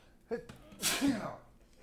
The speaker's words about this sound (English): hang on. I gotta sneeze.